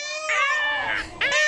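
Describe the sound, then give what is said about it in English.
A peacock gives a loud, nasal wailing call, one long drawn-out cry followed immediately by a shorter second burst, with no one talking. “Oh, this is a peacock sound?”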